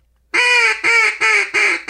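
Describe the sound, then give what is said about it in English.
A duck call blown in a quick run of five loud, nasal quacks, evenly spaced, the last one cut off at the end, with no voices. “They go, you say, no, you got to come from your lung and get your tongue planted on the roof of your mouth.”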